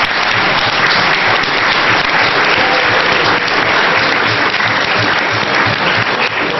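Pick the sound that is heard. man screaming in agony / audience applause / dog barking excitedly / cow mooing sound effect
audience applause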